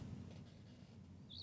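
A single short, high bird chirp comes near the end, over a steady low hum and faint background noise; no one is speaking.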